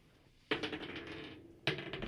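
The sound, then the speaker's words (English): Dice are rolled for perception rolls in a tabletop role-playing game, clattering across a hard tabletop in two rattling bursts, the first tumbling for about a second before a second toss lands and skitters on. No one speaks. “Give me that dice.”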